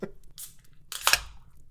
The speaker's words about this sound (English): Okay, well, I think I'm going to have to put all my Hobbit weight into opening this can here, but here we go.